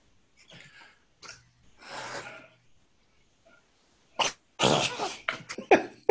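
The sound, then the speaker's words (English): A voice imitates someone nodding off in a chair: soft breathy exhales and a drawn-out raspy snore, then a burst of loud, sharp snorts and gasps, as if jerking awake. “Now, if somebody's listening to that, they're not going to know that I've like pretended to be falling asleep in my chair.”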